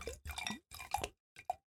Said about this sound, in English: Oh, that's good. Audible pouring there.